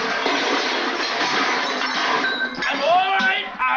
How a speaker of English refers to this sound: Someone dropped a large film canister off camera. They caught it in terms of sound.